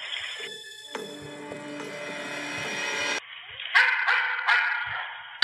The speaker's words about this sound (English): Dog's indicating source there, Mike. That's what it does? Yep. Without any indication from me as to where Kelly had just shown me, the dog actually went directly to that tree and indicated the scent and the source of human remains.